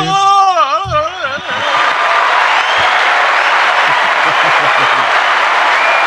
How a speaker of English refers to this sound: Wait, we have an applause sound effect for that. Hold on.